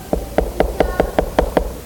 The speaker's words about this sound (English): Another interesting thing about those terms is the term for knock. The term for knock is to knock with the knuckles.